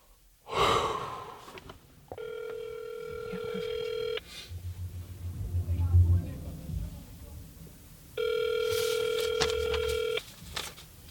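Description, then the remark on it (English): A phone call dialed from inside a car on a residential block rings out twice, each steady ringback tone lasting about two seconds with a pause between, preceded by a sharp intake of breath and a faint low rumble in the gap. “Back in the car on a random residential block, I take out my phone, punch in the number for the boy in the photo.”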